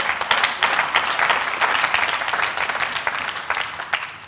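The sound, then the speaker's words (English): Sustained applause from an audience, many hands clapping in a dense, steady wash that stays loud and even for several seconds with no voices standing out. “And that deserves a round of applause right there.”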